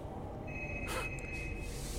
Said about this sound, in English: Wait. Shh. Do you hear that? What is that? That is my cell phone. It's your phone?